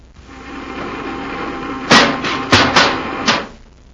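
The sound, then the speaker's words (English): A steady electric buzzing hum swells and holds, broken by four sharp, crackling bursts in an uneven sequence before it cuts off: a sci-fi repeller ray firing at a Zarg, smashing it against a tree trunk, with no voices. “The repeller ray smashed him against a tree trunk.”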